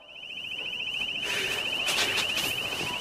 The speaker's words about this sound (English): Will someone turn that alarm off?